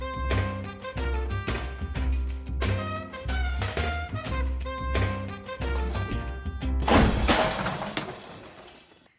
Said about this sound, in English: Why do you suppose I just hurled a chair at your head